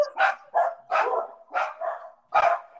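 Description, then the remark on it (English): Three dogs, a border collie and two dachshund mixes, bark in a quick run of about six loud yelping barks, some overlapping and blending together, with no talking over them. “The dogs do not like the University of Oregon.”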